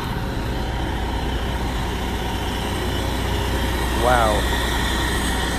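A large fire truck engine idles at a fire scene where firefighters are cleaning up. Its steady, low diesel rumble holds even throughout, broken only by a brief rising chirp near the end.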